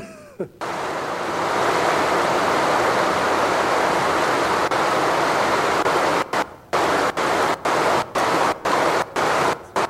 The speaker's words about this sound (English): You've all been near a creek. You've heard the creeks run.